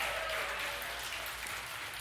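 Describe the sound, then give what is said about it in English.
A church audience claps together in praise of the Lord, in steady, dense applause for the full two seconds, a continuous wash of overlapping hand claps with no voices on top. “Can I get a hand clap of praise for the Lord?”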